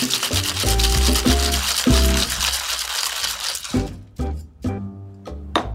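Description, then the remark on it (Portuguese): A cocktail shaker full of ice, shaking a non-alcoholic drink, rattles hard in rapid, dense bursts for several seconds, then slows into a few scattered clinks and knocks as the shaking stops. “Para a nossa versão sem álcool, a mesma coisa, tá? Vamos bater vigorosamente bem.”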